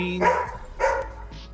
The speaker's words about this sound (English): Sorry, I got dog howling at me here.